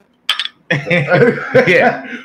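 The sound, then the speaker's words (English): A quick, bright clink of drinks touching in a toast, followed right away by voices talking and chuckling. “Cheers, bro. Talking, yeah, cheers.”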